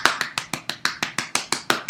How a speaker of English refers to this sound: Self-applause is always very important for your health.